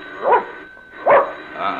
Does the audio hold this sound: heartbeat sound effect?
no